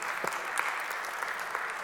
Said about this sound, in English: Come on, give God one more hand clap of praise for that.